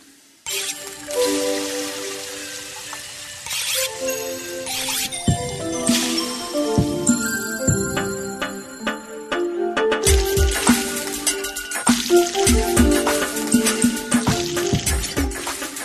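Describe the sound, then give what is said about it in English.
A busy kitchen bustles with steady sizzling from a hot pan, layered with repeated sharp knife chops and clattering utensils, continuous with no one speaking. “Sounds like a busy kitchen. I like it. The chop, chop, chop.”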